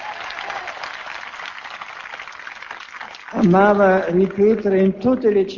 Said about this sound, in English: The pilgrims waved flags, cheered, and applauded as the Pope read out their names.